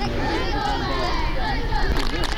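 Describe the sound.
A crowd of classmates chants encouragement for a boy running a race, many voices blending into a loud, steady wall of cheering that stays unbroken for the whole stretch.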